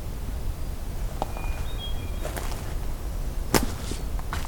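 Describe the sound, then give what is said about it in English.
A black-throated green warbler gives several sharp, brief chip notes at irregular intervals over a steady noisy background, with a faint thin high whistle early on. “got an annoyed black-throated green warbler in front of me, doing a lot of chipping.”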